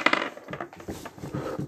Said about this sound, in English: Shatters 18 wine bottles on the partition.